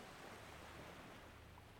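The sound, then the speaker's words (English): A steady, soft wash of ocean surf rolls on the beach, a continuous hiss of breaking waves, with no voices present. “Now, I'm at the beach, reaching out to the ocean”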